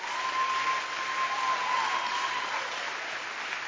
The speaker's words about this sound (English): Put your hands together for the Lord and rise to your feet. Rise to your feet. Rise to your feet. Give the Lord a wonderful, wonderful, wonderful, wonderful clap of hands.